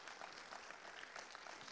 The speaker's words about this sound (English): Come on, you should clap louder than that.